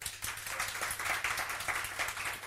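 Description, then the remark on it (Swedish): Gentle, subdued applause from a small audience, a soft steady patter of many hands clapping at an even, relaxed pace without cheering. “Superchillad applåd. Så här verkligen lugnt.”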